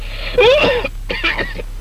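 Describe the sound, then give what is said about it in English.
A man's voice imitates an odd, raspy cough, two throaty hacking bursts with a brief gap between them, fairly loud. “Well, he goes home from work one day with the sniffs, and 2 days later, he's got a funny sounding cough.”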